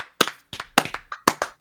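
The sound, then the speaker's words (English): Hands clap in a quick, slightly uneven burst of about nine or ten sharp claps to close a live-streamed show, with no talking. “Let's clap it out.”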